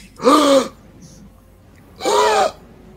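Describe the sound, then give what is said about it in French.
Two slow, raspy breaths, an inhale and then an exhale, sounding eerily human with a throaty, voiced edge. They are separated by a second of near silence, fairly loud. “Tu entends vraiment la respiration comme si c'était un humain.”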